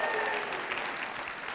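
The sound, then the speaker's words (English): A crowd claps steadily in a dense, continuous wash of applause, cheering for the wife of the UVA wrestling head coach, with a few cheers or whoops rising above it near the start. No one speaks. “You can cheer for her. Go ahead.”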